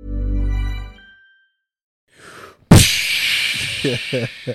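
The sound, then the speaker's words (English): After a low humming tone and a brief pause, a single loud, sharp slap sound effect, put on by Shaq, cracks out, trailing into a noisy wash as voices begin talking underneath. “Shaq putting on the slapping sound effects right now.”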